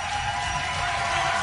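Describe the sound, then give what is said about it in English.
A steady wash of simulated, pretend bar crowd noise, a dense, even murmur of many overlapping voices with no single speaker standing out, holding at a constant moderate level throughout. “They have not stopped this pretend crowd. They're still pretend drinking.”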